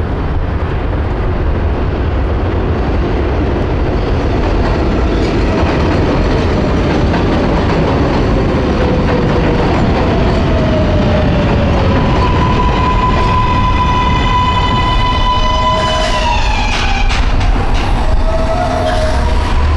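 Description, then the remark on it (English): An elevated 7 subway train roars past in Long Island City, Queens, New York, a loud steady rumble of wheels and clatter with metallic whining tones that slide in pitch, turning to brake squeals near the end. “At the end of my street is the elevated 7 train.”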